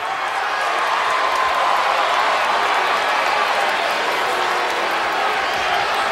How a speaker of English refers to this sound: Those of you who are cheering me right now, you are just the biggest part of me leaving as anything else.